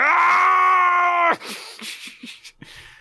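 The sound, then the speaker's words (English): A voice imitating a flustered teenage girl lets out a loud, sustained, high-pitched mock scream lasting just over a second, held at a steady pitch, then cuts off into a few soft breaths and faint mouth sounds. “She gets to the point she just screams.”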